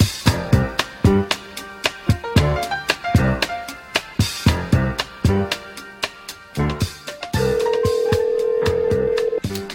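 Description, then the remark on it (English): A rapid series of short, loud telephone keypad beeps is followed by a long steady phone tone that holds to the end, as a random phone call is placed for the Late Night Early Morning Show. No one speaks. “And now it's time for random phone calls with the Late Night Early Morning Show.”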